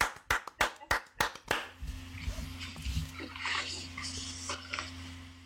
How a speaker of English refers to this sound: So I battled breast cancer in 2016. I've now hit my year 4 clear. That, can we just for 2 seconds, just round of applause for that.